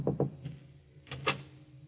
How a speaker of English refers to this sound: Then, as the afternoon fades and dusk sets in, there is a knock at Lucia's door.